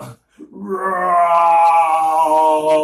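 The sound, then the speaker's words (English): After a short breath, voices let out a long, loud, sustained roar that rises and holds steady for about two seconds, a human imitation of an animal's roar shouted instead of "goal" to celebrate scoring. “Oh, instead of goal, when we score, you should roar.”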